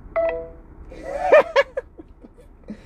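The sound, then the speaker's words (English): A single short telephone keypad beep sounds near the start as 1 is pressed on a work phone during a robocall about an automobile service contract, a steady electronic tone, followed by a couple of laughing or chuckling vocal bursts and quiet background noise. “That was my work phone ringing, calling concerning the dumb warranty shit, and I always press 1 to see if I can talk to the actual people”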